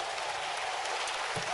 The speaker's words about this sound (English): You guys are too good. Clap your hands for yourselves. Wow. Keep clapping.